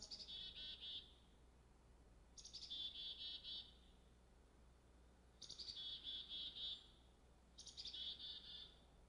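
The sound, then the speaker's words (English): A chickadee calls four times in a steady rhythm, each call a quick run of raspy, repeated notes, clear against a quiet outdoor background with no talking. “chickadee-dee-dee. What a glorious song from that tiny bird.”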